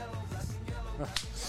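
A slow, steady clap: sharp single handclaps spaced apart at an unhurried pace, fairly quiet, with no one talking over them.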